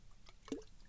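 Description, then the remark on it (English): A single quiet, wet swallow of drinking water, a brief liquid gulp in the middle of an otherwise hushed moment with no one speaking. “I'm getting stuffy drinking water here.”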